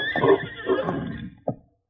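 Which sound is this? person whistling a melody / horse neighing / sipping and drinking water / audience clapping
horse neighing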